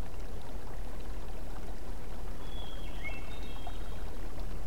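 River water rushes steadily over cobbles in a dense, continuous babble close by, with a couple of faint high chirps briefly rising above the flow.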